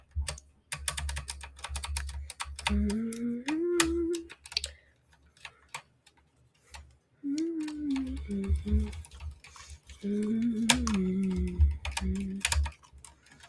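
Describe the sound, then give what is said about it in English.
Crisp clacks of keys on a wireless mechanical keyboard, kept wired, being pressed in quick, irregular bursts, with low voices murmuring underneath during several stretches. “Something feels off about these keys. Can I? I'm just going to.”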